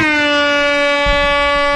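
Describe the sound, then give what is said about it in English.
A loud, sustained air horn blast with a bright, buzzy harmonic tone, holding steady for nearly two seconds without pause. No one speaks over it. “Air horn. I'm going to do that every time that you interrupt anything.”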